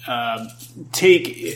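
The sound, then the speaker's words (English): Metal gaming coins clink together in a short, bright burst, preceded by a brief voiced murmur, with a steady low hum running underneath throughout. “That is the gaming coins.”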